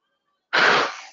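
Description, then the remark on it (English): A single sudden sneeze bursts out of silence, loud, a sharp breathy blast that trails off quickly with no talking around it. “God bless you.”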